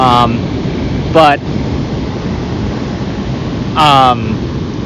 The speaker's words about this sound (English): While the helicopter's flying really low to the water.